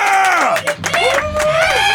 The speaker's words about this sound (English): And these are all the people in the room who are going to clap really loudly. Oh, yeah. Woo! Oh, yeah. Yeah!